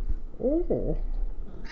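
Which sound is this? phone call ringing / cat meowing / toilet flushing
cat meowing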